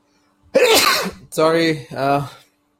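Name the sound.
sneeze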